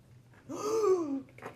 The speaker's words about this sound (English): gasps like he knows who it is.